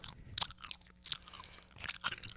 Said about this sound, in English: You're chewing sounds.